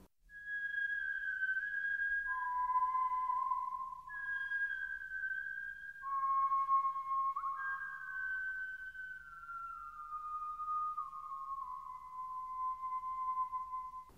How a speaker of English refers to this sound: and it's part of the soundtrack, but it also gets whistled by certain characters. It's a very haunting piece of music, a simple piece of music.